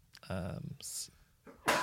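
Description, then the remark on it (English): A person sneezes: a drawn-out voiced build-up followed by a sharp, hissy burst, then another loud breathy burst a moment later. “Bless you.”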